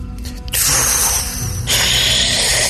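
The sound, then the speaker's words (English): A loud mechanical clicking and grinding of a door lock being turned to unlock the door comes in two sustained bursts with a bright, rasping ratchet texture. No one speaks. “You unlock the door.”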